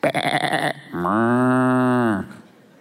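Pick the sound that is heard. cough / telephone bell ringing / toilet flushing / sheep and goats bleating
sheep and goats bleating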